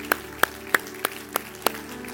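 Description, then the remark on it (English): A handful of sharp handclaps ring out at a steady, unhurried pace, about six in all, with no talking, like a small audience beginning to applaud a mother and grandmother who just graduated college summa cum laude. “And I want to applaud her for that today.”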